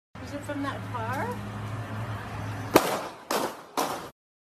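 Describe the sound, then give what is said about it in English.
Handgun shots fired by a terrorist on a sidewalk, captured on a cell phone video: three sharp, loud bangs in quick succession, each cracking out and ringing off briefly. Murmuring voices and background noise fill the moments before the first shot. “I've read reports from firearms experts commenting on the style in which the terrorist held and fired his weapon”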